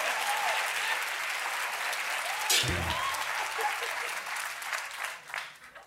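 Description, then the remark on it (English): Sustained applause from an audience, a dense steady wash of clapping that holds at a fairly loud level throughout before thinning out at the end, with a few brief shouts mixed in. “That is the applause of recognition, I see.”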